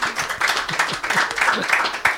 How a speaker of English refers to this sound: Fine, they applaud, they don't come back.